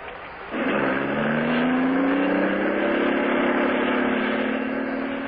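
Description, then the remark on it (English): A car engine running on Atlantic Imperial gasoline hums steadily as it cruises along a highway, the tone rising slightly as it gains speed, loud with no voices over it. “This lets you hum along the highway so nicely.”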